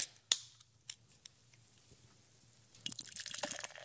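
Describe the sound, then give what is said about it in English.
A few sharp clicks and taps of glass, then a steady gush of beer pouring into a glass with bubbly, fizzing hiss building toward the end. “Pour us a beer.”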